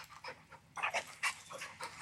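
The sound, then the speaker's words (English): A dog pants in quick, breathy bursts, with a few soft whimpering whines mixed in, the rhythm uneven and moderately loud over a quiet background. “We all tired here except you because you're 2 years old, you fucking dummy. You're 14 in dog years.”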